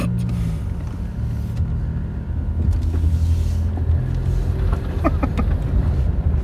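A small car's engine rumbles steadily, a low droning hum that holds for several seconds as the little car is let out and rolls away, with a few faint higher clicks near the end.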